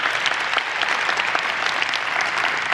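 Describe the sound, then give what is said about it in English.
An audience claps together in sustained, dense applause, a steady wash of many hands at a fairly loud level with no talking over it. “So give yourselves another round of applause.”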